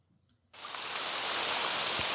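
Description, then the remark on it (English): After a brief hush, steady rain abruptly fills the scene, a dense, even hiss of countless drops pattering onto the open water of the loch at Eilean Donan Castle in the Scottish Highlands, continuous with no voices. “Rain on the Loch at Eileen Donan Castle in the Scottish Highlands.”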